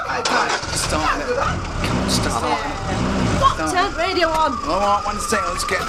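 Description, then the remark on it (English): A car engine cranks and starts, its pitch rising and falling as it revs, fairly loud, amid other busy noise with voices talking over it. “Start it. Radio on.”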